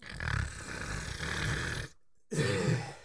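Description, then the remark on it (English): A person imitates a loud, rough battle snore with a long gravelly rasp, a brief silent pause, then a second growling snort-like burst, forceful. “And of course, I give a mighty battle snore.”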